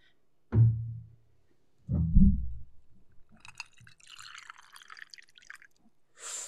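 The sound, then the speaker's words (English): Two dull knocks, then Red Bull energy drink is poured into a glass, with a steady fizzing, splashing stream that runs for a few seconds before a short final burst. “And we're going to pour her off to the side.”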